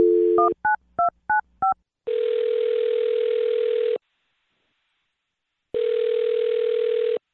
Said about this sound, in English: Well, I'll dial her phone number right now then, see if we can get her on the phone and find out, okay? Okay. All right, here we go.